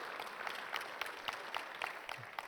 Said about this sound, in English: Can we give them a round of applause? Thank you, guys.